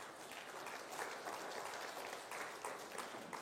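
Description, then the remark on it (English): A crowd applauding, a dense, steady patter of many hands clapping at an even, moderate level for a few seconds with no voices over it. “Nothing like forced applause, eh, folks?”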